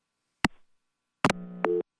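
A phone line clicks, pauses, then clicks again and gives way to a steady, buzzing busy-type tone lasting about half a second, with another click near its end, as a caller's line disconnects on a call-in show. No voices are present.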